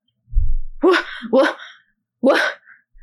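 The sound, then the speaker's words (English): A low thump, then three sharp, voiced gasps, the first two quick and back to back, the third after a brief pause, as a wounded deputy gasps back to life after first aid and sits up. “All right, so you do this successfully, and he soon gasps to life and sits up a little bit.”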